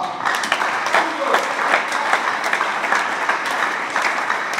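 Sustained applause from a large crowd, a dense, steady wash of many hands clapping at once, fairly loud and continuous throughout.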